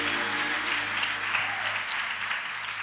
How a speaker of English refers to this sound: Clap your hands at every location if you're ready for God's word.